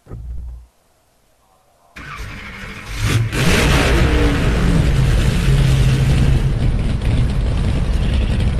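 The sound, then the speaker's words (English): A race car engine cranks over briefly, then fires up with a sudden loud roar around two seconds in and keeps revving hard and raspy, echoing inside a pit garage as it is started and warmed up before heading out onto the circuit. “Anyway, let's give the car a fire up and let her warm up, and let's make our way out onto the circuit, shall we?”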